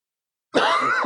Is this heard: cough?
yes